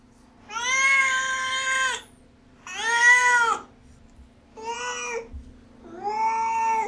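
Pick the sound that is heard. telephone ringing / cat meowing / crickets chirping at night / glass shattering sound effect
cat meowing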